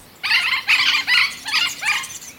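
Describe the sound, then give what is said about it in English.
A yellow-eared parrot, a Colombian bird, gives five harsh, raspy squawks in quick, even succession, each call loud and grating, with no voices present. “This parrot was feared to be extinct in 1997.”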